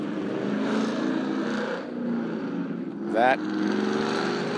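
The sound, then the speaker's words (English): A loud car passes, its engine a steady heavy rumble, with a sharp rising rev for a moment near the end before settling back into a continuous roar. “That is a loud car.”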